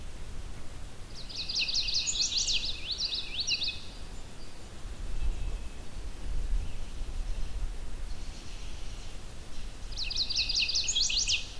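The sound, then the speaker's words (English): A rose-breasted grosbeak sings from a distance, two short bursts of rapid, high warbling notes separated by a pause, over a steady rushing background hiss. “Rose-breasted grosbeak just starts singing, but it's pretty far off.”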